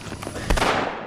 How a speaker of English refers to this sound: And then we hear a gunshot.